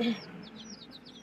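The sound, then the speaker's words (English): Small home-raised mini chickens being given water peep in a quick, steady run of high chirps, about eight in a row, soft, with a faint low murmur beneath and no talking. “I raised mini chickens.”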